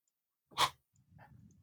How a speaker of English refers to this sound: Oh, hold on a second. I'm about to sneeze.